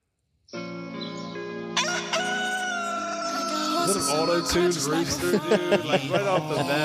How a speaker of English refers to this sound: Auto-tune rooster, dude. Like, right off the bat.